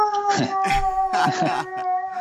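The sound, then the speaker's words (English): Dogs waiting to be let in whine and howl in short, repeated bursts, the yelping cries rising and falling over a steady droning hum in the background. “Oh, it's all right. Don't worry about it. I've got my own dog problems.”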